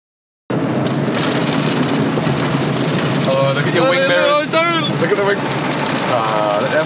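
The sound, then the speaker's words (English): Heavy, steady spray of water drums loudly and continuously against a car from inside an automatic car wash running its cheap wash option, with a couple of brief voices heard faintly underneath. “Is it washing us more? Did you go for the deluxe?”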